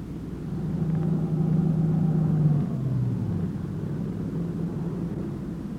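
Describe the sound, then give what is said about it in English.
The engine of a dark-colored late-model sedan rumbles, its low drone easing down in pitch partway through as the car swings off a dirt road, slows and rolls to a halt near a shack, then idles steadily with no voices. “It swung off the dirt road and pulled to a stop near the shack.”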